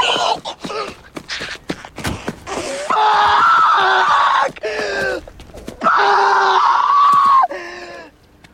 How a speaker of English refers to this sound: He runs away from the car and just starts screaming into the sky. Guttural screaming.